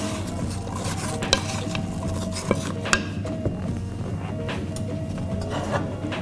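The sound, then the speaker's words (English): Steady scraping and rustling of a spoon stirring nutmeg, cinnamon and pie crust mix together with cut, sliced apples in a bowl, with a few sharp clinks of the utensil against the side, no one speaking. “So once all my apples are cut and sliced, I'm gonna go ahead and add the nutmeg, cinnamon, and the pie crust mix. We're just gonna stir these together.”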